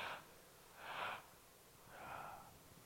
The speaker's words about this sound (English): just breathe in 3 times. We'll do it together. Breathe in 3 times without breathing out and see how it presses on your lungs. Let's do it together.